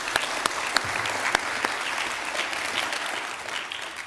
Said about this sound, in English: Amen. Hey, let's clap for that. Come on.